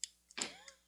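A few sharp, metallic clicks, like a beer can's tab being flicked, come at irregular intervals. One is followed by a brief scraping rattle. They are quiet and close, with no talking.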